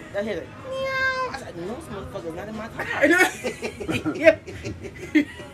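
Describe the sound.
A person imitates a cat with one drawn-out, nasal meow, fairly loud, followed by lively talking and a bit of chuckling.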